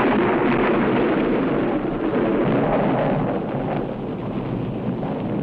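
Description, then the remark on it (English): A loud thunderclap following lightning rolls on as a broad, roaring rumble for several seconds without fading much. No voices. “Did you see that? Lightning?”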